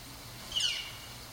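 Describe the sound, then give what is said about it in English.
A single brief, high-pitched bird call rises out of quiet outdoor background noise, soft, with no voices. “Those are birds.”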